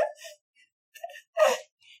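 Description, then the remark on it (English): A voice imitates the ragged, labored breathing of someone doubled over and unable to catch their breath after sprinting through cold air across a parking lot: a few short, strained gasps and wheezy inhales in uneven rhythm, fairly loud, with one harsh, strong gasp near the end. “And around 50 yards from my car, I doubled over and I was unable to catch my breath. And I was breathing like this.”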